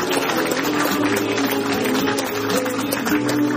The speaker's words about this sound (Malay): Tepukan gemuruh kepada Datuk Seri Dr. Ahmad Zahid Hamidi.